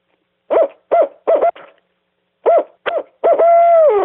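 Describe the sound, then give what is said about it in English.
A person imitates a barred owl, giving a rhythmic series of short, loud hoots in two bursts, ending with a drawn-out, descending hoot. “They're just, you know, so like a hoot owl, everybody knows what a hoot owl sounds like, but I'm going to do it anyway.”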